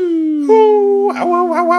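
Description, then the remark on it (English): A person's voice imitates a wolf howl for the wolf companion Greymane of the half-orc druid character Kurgan: a loud, sustained, wavering tone that climbs and dips in pitch, lasting a couple of seconds. “I have a little companion, the wolf Greymane.”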